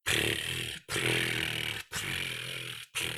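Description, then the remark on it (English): A person imitates a cat's purr with three long, rough, buzzing breaths, each about a second, separated by brief pauses, steady and fairly loud with a low rattling pulse. “Start with purring.”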